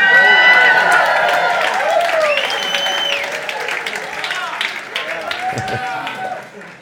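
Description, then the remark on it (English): An audience erupts in joyful shouting and cheering, many voices whooping and calling out at once over scattered applause, loud and sustained before tapering slightly at the end. “The sound of joyful shouting.”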